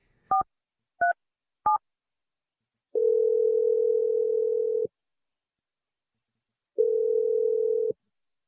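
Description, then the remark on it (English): Three quick keypad beeps as a number is dialed, then two long steady ringback tones separated by a pause, an outgoing call from the radio show Brooke and Jeffrey in the Morning ringing on the line with no voices. “I will call her for 4 straight days until she picks up the phone.”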